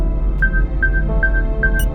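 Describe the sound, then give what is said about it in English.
A proximity alarm beeps four times at a steady, quick pace, each short, clear mid-high tone cutting through a constant low rumble in the background. “What's that beeping about? Proximity alarm.”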